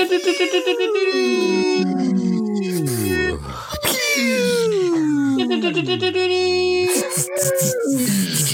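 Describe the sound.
Three people vocally imitate a fight scene at once as cover sound effects: repeated falling-pitch laser zaps of a laser blast blowing up a jet, a whooshing jet noise and a sustained high lock-on tone of a targeting reticle, overlapping loudly for about eight seconds.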